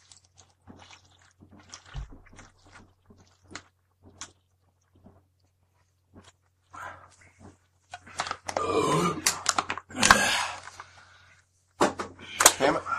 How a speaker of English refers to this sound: We all got four full beers, and for the final show, a little festivity, we're going to down these beers.